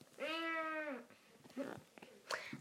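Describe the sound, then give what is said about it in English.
A person imitates a fighting cat with one long, strained yowl lasting nearly a second, followed by a few shorter, quieter vocal noises and breaths. “Can you do a fighting cat?”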